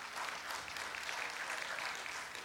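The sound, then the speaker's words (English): An audience claps for the 229 children and teens enrolled in its teen and children's ministries, a steady, dense wash of applause, many hands blending into a continuous crackling roar that holds at an even level throughout, with no voices rising above it. “Yeah, you can clap.”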